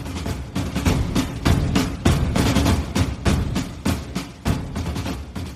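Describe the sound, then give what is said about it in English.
A dense battle sound effect of overlapping gunfire and booming cannon blasts, loud and continuous, with bursts rising and falling in quick succession and no voices. “All right, men, load the cannons and hold the line.”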